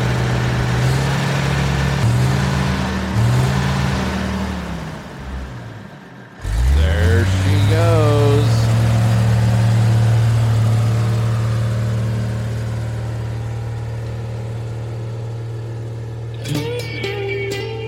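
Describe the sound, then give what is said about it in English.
A voice imitates a big diesel truck engine getting started on a cold day: a low, loud rumble with stuttering revs, a brief drop-off, then a rising rev that settles into a long, steady idling drone. “It's kind of like, oh, you know those big bad diesel trucks on a cold day. It's kind of like getting started. Revving it up a little bit.”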